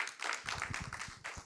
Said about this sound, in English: Let's give the Lord a round of applause real quick.